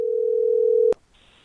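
A telephone line rings on an outgoing call from radio station B98.5: one steady low ringback tone lasting about a second, abruptly cut off by a click, followed by a faint high electronic whine.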